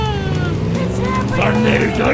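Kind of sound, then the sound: vehicle, monster truck engines roaring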